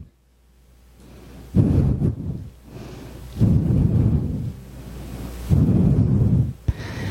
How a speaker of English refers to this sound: And that was last year's storm, not this year's.